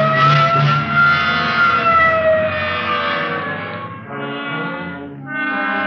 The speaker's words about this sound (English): Okay, hit the siren.